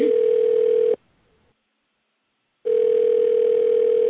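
A steady telephone dial tone, heard as a call is placed to Roy Wood Jr. on Soul Kitchen Radio, hums loud and clear, cuts out for nearly two seconds of silence, then returns unchanged. The sound is thin and narrow, like it's coming over a phone line.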